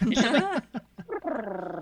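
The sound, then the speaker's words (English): A voice imitates the warbling, Chewbacca-like growl of a pet dog named Presley: a wavering, moaning cry, two short yelps, then another drawn-out groaning call, fairly loud with no other talking. “I love the sound of Presley, which is my dog. She sounds like Chewbacca.”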